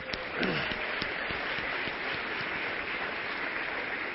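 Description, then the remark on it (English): An audience applauds steadily for mothers of two years or less who have stood up, many hands clapping at once in a dense, continuous wash of sharp claps that holds an even loudness throughout, with a brief voice near the start. “Now the reason we're clapping for them is because they're still not sleeping very much, okay?”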